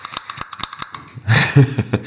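Rapid, sharp mechanical clicks repeat close to the microphone in an uneven rhythm, like a pedal being pressed over and over, then give way to a burst of louder, noisier clatter near the end.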